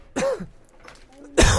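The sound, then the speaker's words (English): Two harsh, loud coughs right up against a microphone, separated by a short quiet gap, with the second burst sharper and more forceful. No one speaks. “Well, thanks for coughing into the mic.”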